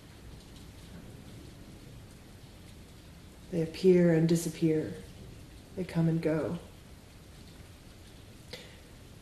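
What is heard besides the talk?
rain falling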